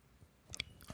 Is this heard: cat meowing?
no